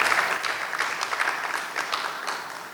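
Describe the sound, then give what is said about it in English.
A crowd claps steadily, a dense wash of overlapping handclaps at a fairly even level throughout, with no voices rising above it. “So I think there should be a round of applause for all of us.”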